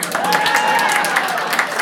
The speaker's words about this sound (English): Okay, again, big bright lights. I need big rounds of applause. How many people finished their Christmas shopping?